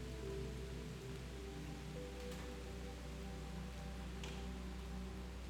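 rain falling

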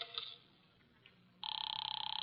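telephone ringing

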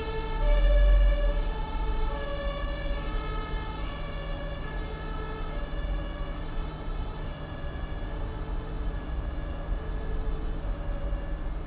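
ambulance siren passing by

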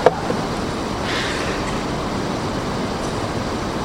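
rain

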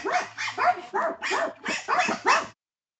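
dogs barking

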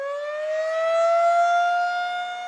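emergency siren wailing

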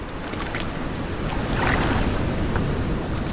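wind and ocean waves

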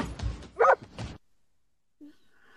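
dog barking

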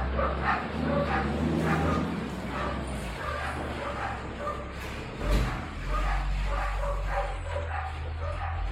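dogs barking

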